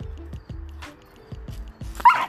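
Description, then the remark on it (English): Two dogs give a string of short, sharp barks and yips in quick succession as one dog pesters the other, a pregnant female, ending in a higher-pitched yelp. No one speaks. “Just my other dog was fucking with her some more.”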